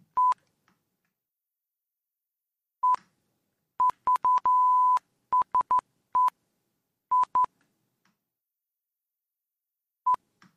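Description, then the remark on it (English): A string of clear telephone line beeps at a single steady pitch, spaced irregularly, with a quick burst of short tones and one longer held beep, and no voices. “What the hell's going on with it? Are you tapping the phone line?”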